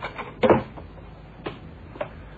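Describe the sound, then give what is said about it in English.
A door swings shut with a solid thud, then two softer knocks or latch clicks follow a second apart amid otherwise quiet surroundings. “Close the door”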